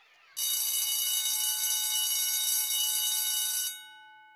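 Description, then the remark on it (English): A loud electric school bell rings steadily for about three seconds, a harsh metallic clatter rich in high overtones, then cuts off and fades with a brief ringing decay. “And then the bell rang, and we all rushed to come and talk to you.”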